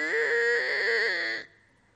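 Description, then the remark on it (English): A voice mimics a creaking, rusty door hinge: one strained, nasal squeal lasting over a second, its pitch wavering up and down before cutting off abruptly into near silence. “Imagine the sound of a rusty hinge, right?”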